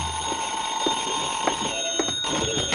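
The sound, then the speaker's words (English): A telephone rings in a room with a steady, shrill, high-pitched tone that holds for the whole stretch, a few faint clicks breaking through underneath. No one speaks. “I went back to my room and the phone was ringing.”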